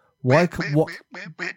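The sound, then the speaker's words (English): A few nasal duck quacks, a run of two or three longer calls followed by two short, clipped ones, fairly loud with brief gaps between them. “And it may sound like they're just a bunch of quacking fucknuts, but they're not.”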